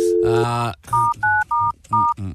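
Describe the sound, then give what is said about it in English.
A telephone number being dialed: a steady low tone, then four short dual-pitch keypad beeps in an even rhythm, clear and fairly loud, with a low murmur beneath them. “She'll give her a bell.”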